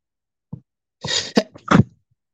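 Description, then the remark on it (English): A loud sneeze: a short breathy intake, then a hissing build-up and sharp explosive bursts of noise, heard alone with no talking around it. “I was trying to put the banner up before I sneezed.”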